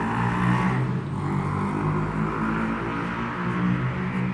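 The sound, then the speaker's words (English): A passing motorbike's engine drones steadily, a low buzzing growl with a layered harmonic hum that holds fairly even in loudness throughout, with no voices over it. “Thank you, Mr. Motorbike Rider.”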